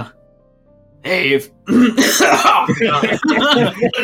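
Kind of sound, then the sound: human body sound, cough and throat clearing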